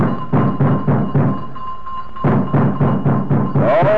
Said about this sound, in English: Next morning, the two policemen went to the house. All the doors and windows were locked. There was no sign of life. For 5 minutes or more, they rang the bell and thumped on the front door. There was no response.